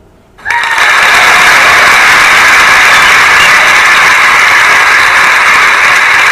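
After a brief silence, a Google smart speaker, answering the command "Hey Google, clap your hands", abruptly plays a recorded sound of hand clapping, a dense, steady wash of many claps that stays loud and even until the end, with no talking.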